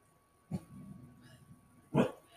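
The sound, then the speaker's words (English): A dog barks twice at someone walking past the house, about a second and a half apart, with a low rumbling growl in between. The barks are loud, with no talking. “Someone's trying to walk past our house, and how dare they.”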